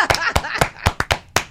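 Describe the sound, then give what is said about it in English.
Scattered hand claps ring out, about seven sharp, loud slaps at an uneven pace, with a faint murmur of voices underneath, like an audience still applauding after a big birthday announcement. “Why is everyone still clapping?”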